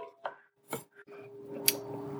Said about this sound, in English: I have so many vegetables, I'm going to have to, like, cook it in stages. Okay. Chopping that.